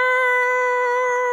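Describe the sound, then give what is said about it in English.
A person imitates a deer call with one loud, steady, horn-like note held for about a second and a half, with no talking over it. “Yeah, it could be a moose call or a deer call, but kings went on hunts and that's how they lured in the animals.”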